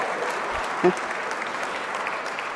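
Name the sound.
audience applause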